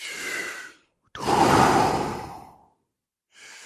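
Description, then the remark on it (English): Three deep, airy breaths during a guided breathing exercise: a rushing exhale, a long full breath lasting over a second, then another beginning, separated by short silences. No talking. “Just go with the flow. No minding. Just go. You feel what you feel as you're breathing.”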